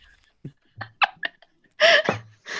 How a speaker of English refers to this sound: Now, off microphone burp.